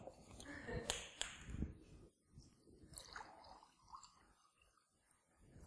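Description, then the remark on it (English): A drink is poured into a cup with a soft gurgling splash that swells for a couple of seconds, then thins to a quieter trickle and faint clinks against a low murmur. “I'm just going to pour me one as well.”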